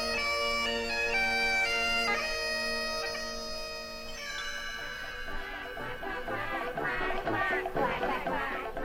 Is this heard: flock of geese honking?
yes